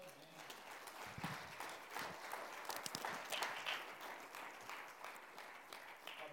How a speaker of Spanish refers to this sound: Si este aplauso es para Dios, a little bit louder. Déselo más fuerte.